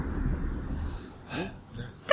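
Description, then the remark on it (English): A voice acts out exhausted gasping, as a character flopping down on the ground, with a few ragged, wheezy breaths, one longer heave in the middle and a sharper strained catch at the end. “Yeah, I flop down on the ground just gasping, and then I say, someone called Glyph.”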